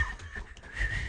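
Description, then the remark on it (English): A person tries to whistle, producing a thin, steady, fairly quiet tone held for about a second over a low background rumble, with no talking. “I've never been able to whistle good, and I just feel like I nailed it, and it's never going to happen again.”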